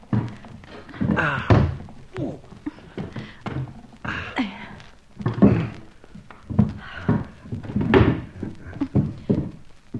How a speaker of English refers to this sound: Now, help me put these chairs against the door. Now, come on. Quietly does it.